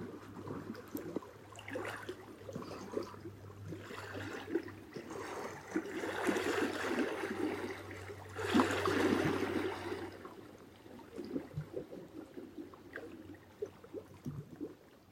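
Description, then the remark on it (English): In the morning quiet, water washes and whooshes steadily, swelling into louder surges around the middle before easing back, with soft gurgles and trickles and a low steady hum beneath for much of it. “Perhaps this is the sound we heard and felt when we were inside our mothers. The whooshing of water.”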